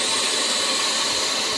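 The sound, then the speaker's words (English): A chamber vacuum sealer with its lid closed pumps the air out of its sealed chamber, running steadily for about a minute with a loud, continuous mechanical hum and an airy hiss, holding the same tone throughout with no voices. “I'll close the lid. It's going to start doing its thing. It takes about a minute.”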